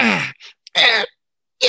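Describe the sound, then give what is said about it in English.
A person imitates the character Nomu's stretching cat yawn on waking in the morning, with three strained, breathy, fairly loud vocal bursts separated by short pauses and a tiny click. “He gets that cat yawn, just finds the nearest corner and rubs his back against it to scratch it.”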